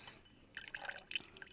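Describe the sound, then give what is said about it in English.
About 3 ounces of ginger-infused simple syrup trickles and drips into a glass in a short, fairly quiet pour, with small splashy liquid sounds clustered over about a second and no voices. “3 ounces of, I have here ginger-infused simple syrup, but you can just use regular simple syrup, which is 1 part sugar, 1 part water, heated up until it dissolves.”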